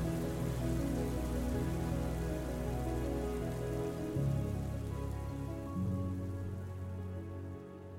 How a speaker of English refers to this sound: Obviously, this storm is a metaphor, but sometimes the stress we experience from the climate crisis can become all too real.